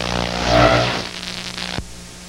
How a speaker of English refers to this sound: A loud, grating, buzzing sound is all that can be heard.